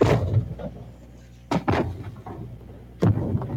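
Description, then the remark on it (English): Fireworks going off: three sharp, booming bangs, two in quick succession and a third a moment later, each with a brief rumbling tail over a low, steady background murmur. “That is a firework happening right there.”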